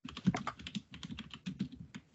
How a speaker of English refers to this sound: Type. That's your husband typing.